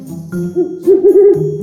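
An owl hoots in a quick series of three or four rounded, wavering calls over a steady low hum, fairly loud, with no one speaking.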